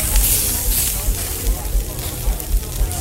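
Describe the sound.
Meat sizzles over a fire with a steady, bright crackling hiss, while muffled low thumps and indistinct background voices pulse irregularly underneath.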